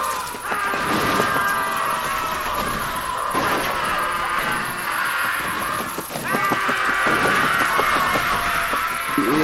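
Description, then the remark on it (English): A dense flock of about 200 ravens screaming and cawing all at once as they swoop down and attack a group, a loud, harsh, continuous chorus of overlapping calls with no pauses, chaotic, with no talking. “The guy shoots the bird, hits it, and as soon as that happens, all 200 ravens come screaming down on the group and start to just attack.”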